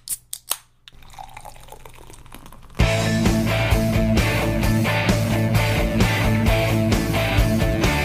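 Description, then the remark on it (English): A few sharp clicks and a crack as a beer can tab pops open, then a soft fizzing pour before loud, steady music abruptly takes over for the rest. “Now let's pop the tab.”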